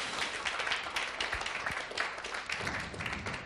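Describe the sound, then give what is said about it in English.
A crowd claps together in dense, steady applause congratulating Les and Tess, an absent couple who married the day before; many hands make a continuous crackling patter of moderate loudness that holds evenly for a few seconds, with no one talking over it. “Les and Tess tied the knot yesterday, so can we give them a little clap in their absence?”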